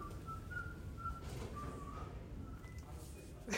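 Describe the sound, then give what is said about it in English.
Someone whistles a soft, wandering tune somewhere down a hallway at Texas State University, towards the faculty offices, the thin notes stepping up and down in pitch, faint over a steady low rumble of indoor background noise. “I can hear faded pianos and whistled tunes as I walk the halls towards the faculty offices.”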